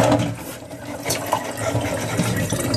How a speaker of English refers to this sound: She sprayed the water bottle in her boyfriend's face.